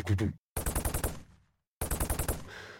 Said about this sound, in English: So starting off with, actually, it was a recording of a submachine gun where I just filtered everything out, and so you didn't hear anything except for this sort of throb.